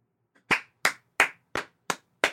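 Six sharp, crisp hand claps at a steady, even pace, each a bright slap with a quick decay, with no voices or other sounds in between.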